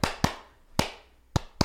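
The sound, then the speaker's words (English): Sharp hand claps in a weird polyrhythm, an uneven, lopsided rhythm of five bright cracks with irregular gaps, each ringing out briefly before the next. No voices. “I'm going to very quickly switch to like a weird polyrhythm clap to try to throw him off.”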